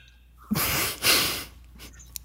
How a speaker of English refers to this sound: I'm gonna go through the 7 stages of grief if your hiccups don't stop.